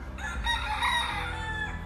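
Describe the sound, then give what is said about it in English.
A rooster crows in one sustained, strained call lasting about two seconds, fairly loud, with a low background rumble beneath it. “Oh, this freaking rooster.”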